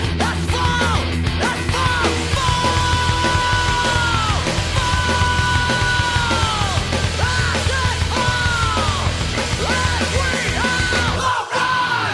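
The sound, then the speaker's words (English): Loud, strained rock vocals build from speaking to shouting and screaming in long sustained notes over a dense, distorted band, staying intense and up-front for the whole stretch. “because you get to hear him building up from speaking to screaming.”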